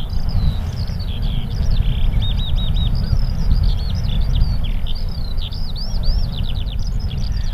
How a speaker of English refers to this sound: And I hear the beautiful skylark now in the background again.